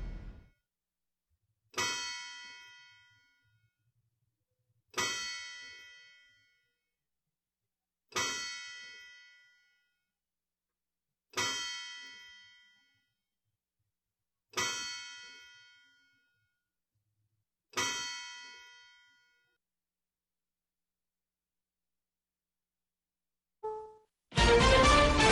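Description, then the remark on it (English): A courthouse clock bell tolls seven o'clock in slow, evenly spaced strikes about three seconds apart, each ringing out and fading before the next, followed by silence and a sudden loud burst of sound. “Courthouse clock time, 7 o'clock.”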